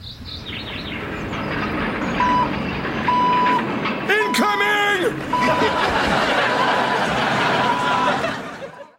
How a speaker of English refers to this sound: Right after the end credits, however, what you have is a garbage truck. It looks like it's approaching the house, and Al seems to have a little PTSD.